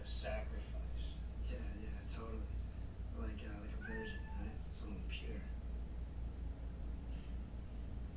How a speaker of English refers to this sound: If you hear my cat, it's because she's terrified of what's going to happen next in this movie.